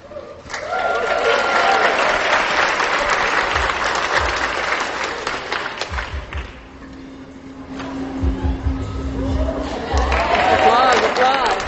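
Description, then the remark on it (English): A crowd applause sound effect, played by hitting an applause button, rings out in a dense burst, dips briefly to a low hum around the middle, then swells back up with clapping and faint cheering, with voices mixed in. “So one is hitting the applause button while the other one is jumping through a hoop.”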